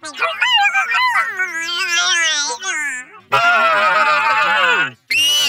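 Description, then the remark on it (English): A voice imitates a Bigfoot call: a loud, wavering howl that swoops up and down for about three seconds, then a harsh, raspy roar that breaks off before one short final burst. “Want to hear my Bigfoot call?”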